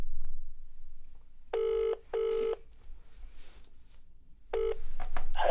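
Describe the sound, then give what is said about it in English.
A telephone ringing tone heard down the line: two short buzzing bursts close together, a pause, then the next burst starts. Clear and steady, with faint background noise and no talking. “Yeah, you answered the phone this time, so you're doing well.”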